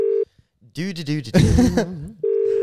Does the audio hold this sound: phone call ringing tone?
yes